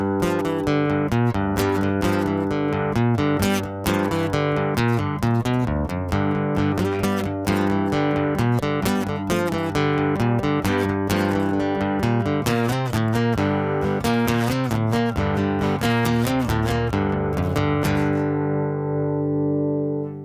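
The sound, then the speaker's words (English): Acoustic guitar strummed steadily through a Storm preamp pedal, full and even in tone with sustained chords, a sharp pick attack on each stroke, and a ringing fade at the end. No talking. “It's just a little less, I don't know, buzzy and unruly sounding.”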